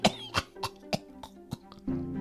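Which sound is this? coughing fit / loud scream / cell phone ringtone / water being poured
coughing fit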